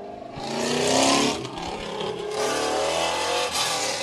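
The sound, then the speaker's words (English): A loud Camaro convertible's engine revs hard as it passes by, roaring up to a peak around the first second before settling into a steady, throaty drone, with no voices. “That was a Camaro. I don't know why you'd want a car that loud on a convertible.”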